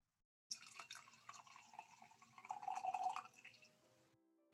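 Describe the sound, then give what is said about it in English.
A few last drops of wine are shaken out of a jar into a glass, giving faint irregular drips and small splashes with a brief trickle and light clinks. “I mostly just like wanted to see if I could catch the sound of the drops of wine.”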